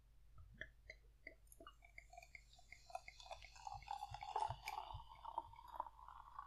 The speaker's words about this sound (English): Should I see if I can simulate the sound of pouring by just pouring? If you want, yeah.